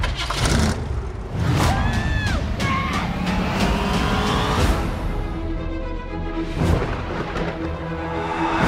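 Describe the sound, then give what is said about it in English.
A station wagon's engine roars steadily as the car drives, with rising revs and a brief high whine early on, loud throughout, no voices. “You went with the station wagon? It's the only one that had an engine.”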